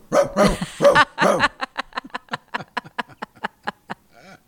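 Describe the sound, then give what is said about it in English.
A person imitates a dog with a few loud, throaty barks, then a rapid run of short, clipped yips that trail off at the end. “I know you're going to send me a clip of you barking.”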